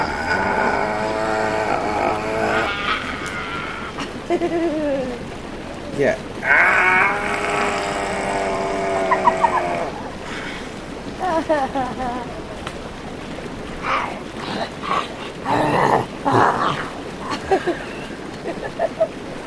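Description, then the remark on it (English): A puppy makes rumbling, growling noises in a string of throaty bursts with rising and falling whiny tones between them, over a steady low rumble. “Ladies and gentlemen, the puppy has gotten a new job. As a road construction machine.”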